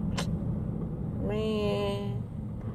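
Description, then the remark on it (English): Steady low rumble of a car driving in traffic, heard from inside, with a quick click near the start and a sustained, wavering tone lasting about a second midway. “I still got traffic.”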